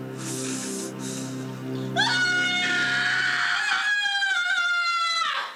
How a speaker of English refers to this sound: The kid screams as the trolls eat his mum, the end.